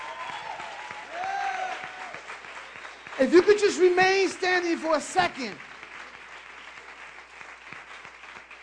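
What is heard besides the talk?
audience applause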